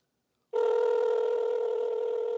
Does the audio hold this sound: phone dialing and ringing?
yes